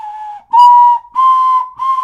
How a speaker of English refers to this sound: Oh, well, I'm pretty sure my mic picked it up. But if you want to hear some bad ocarina playing, then...